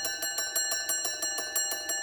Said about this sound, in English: If there's clearly no consensus at that point, the Speaker in the Commons says, "Division, clear the lobbies." Or in the Lord Speaker will say, "Division, clear the bar." Then the division bell starts ringing.